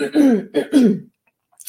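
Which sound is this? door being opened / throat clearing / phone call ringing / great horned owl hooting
throat clearing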